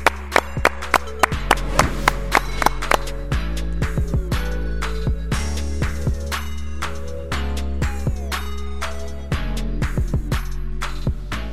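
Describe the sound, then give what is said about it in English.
Hands clap sharply and repeatedly in uneven bursts and clusters, each clap crisp, over a steady low droning background with no talking. “Clap it up.”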